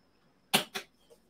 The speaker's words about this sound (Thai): เดี๋ยวขออนุญาตปิดพัดลมก่อนนะฮะพอดีเปิดแล้วมันหนาว